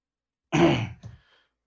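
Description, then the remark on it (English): A person imitates hacking up a furball and spitting out part of a leather glove: one harsh, gravelly throat-clearing retch followed by a shorter second heave, fairly loud, with silence on either side. “I will cough / burp and spit out part of a leather glove.”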